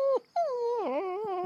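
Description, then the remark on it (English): A dog whimpers: a short whine, a brief pause, then a long, drawn-out whimper that wavers and dips in pitch, with no one talking. “Santa's little helper, you are a selfish coward and a bad dog”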